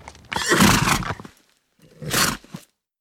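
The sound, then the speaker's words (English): A horse neighs twice, a loud, breathy whinny lasting about a second, then a short pause and a second, briefer neigh that trails off. No voices are heard. “They can only go by horses and bullock carts.”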